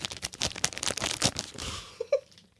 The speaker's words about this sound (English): They're individually packaged. They're individually wrapped. That's so much get garbage to... for no fucking reason. Yep. So you get to hear more wrapping paper opened.